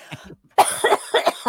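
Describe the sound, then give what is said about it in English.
A soft, low throat clearing gives way to a loud fit of coughing from a tickle in the throat, several harsh bursts in quick succession with no talking. “You need the cough or the throat clearing mode in your implant.”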